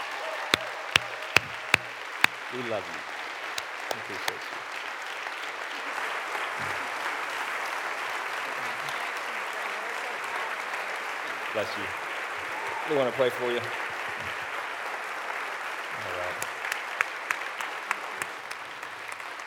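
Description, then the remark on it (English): A crowd rises and applauds steadily for the whole stretch to thank a group of people, a dense, even clatter of clapping with a few sharp louder claps early on, while a man speaks over it in short phrases. “And so let's rise and thank these guys.”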